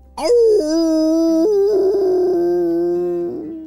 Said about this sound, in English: He let out a giant howl